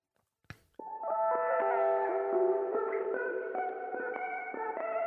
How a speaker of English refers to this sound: So it starts with the little melody, all using the same pedal and some reverb and stuff. This is me actually with a pick this time.